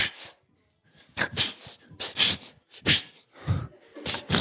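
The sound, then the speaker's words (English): A person imitates the sneeze that a dog named Lolly makes when she wants attention, such as in the morning when someone stays in bed too long: a string of short, breathy snorts and sniffs in quick uneven bursts after a brief pause, fairly loud with no talking. “My dog, Lolly, sneezes.”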